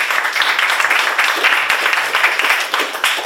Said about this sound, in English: So please give everybody a big round of applause.